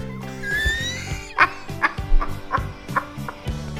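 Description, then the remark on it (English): A rising, drawn-out werewolf-style howl gives way to a run of six sharp yipping calls at a steady pace, fairly loud, with no talking. “So much howling.”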